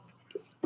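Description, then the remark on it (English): A short, soft sneeze: a faint hissy intake, then a quick sharp burst at the very end, not very loud. “Bless you.”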